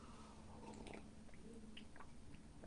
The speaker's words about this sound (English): I'm going to take a quick sip of my coffee.